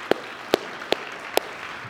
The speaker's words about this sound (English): I want to give a round of applause to these parents.